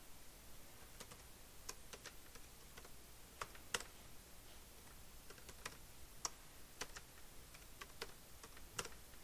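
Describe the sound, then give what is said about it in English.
Irregular clicks of typing on a computer keyboard, crisp, with bursts of keystrokes and brief pauses against a quiet background hum; no one speaks. The person is entering and confirming a password. “It's a very nice keyboard.”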